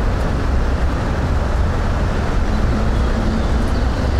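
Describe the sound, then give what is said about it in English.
A steady, loud roar of traffic in the sunken BQE (Brooklyn-Queens Expressway) trench, heard from about half a block away, a continuous low rushing wash with no individual vehicles standing out, rather like surf, with no voices. “Sounds like the ocean.”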